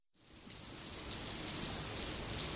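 Steady evening rain with wind falls at the edge of a town near a forest, after a brief silent moment, a dense, even hiss with soft patter across the whole range, holding a constant moderate level without any voices.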